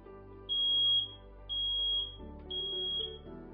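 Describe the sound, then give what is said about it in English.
A smoke alarm sounds three shrill, high-pitched beeps in a steady rhythm, each about half a second long, loud over a low background hum. “Have working smoke alarms. Check them often to make sure that they work.”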